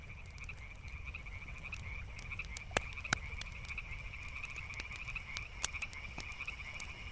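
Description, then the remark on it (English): A night chorus of frogs keeps up a steady, high-pitched trill, broken by sharp, louder croaks popping out every second or two over a low background rumble. No one speaks. “Lying in your tent tonight, you'll swear there's a frog in there with you.”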